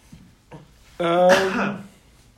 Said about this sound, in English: Bless you. I coughed. Whatever, bless you.